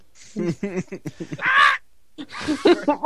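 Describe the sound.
A person imitates crow caws: a short run of choppy vocal sounds, then a loud, harsh, nasal caw, a brief pause, and a second raspy caw.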